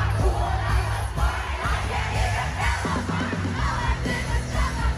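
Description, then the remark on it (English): A huge concert crowd screams along in unison, shouting the lyric "and I can't even parallel park" over loud, driving music, a dense continuous roar of voices that fills the whole stretch without pause. “My favorite part of this song is when they say, and I can't even parallel park, because the whole crowd just like screamed it.”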